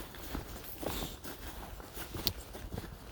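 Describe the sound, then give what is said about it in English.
Careful footsteps on slippery, icy ground: a handful of slow, uneven crunching steps, fairly quiet, with no voices. “Really slippery, so I'm treading quite carefully.”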